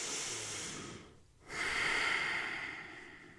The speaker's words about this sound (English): Inhaling and exhaling through your nose, you're going to drag the breath along the back of your throat to create this hissing sound or the ocean sound.